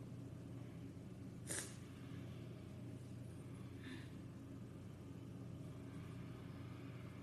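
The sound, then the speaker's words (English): A video game race car engine drones steadily and low throughout a 10-lap test race, with a brief sharp hiss-like burst early on and a fainter one later; no one speaks. “So we're doing a test race with these models.”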